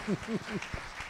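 A short, fairly quiet stretch of crowd applause, with a voice letting out three quick rising-and-falling calls over the clapping.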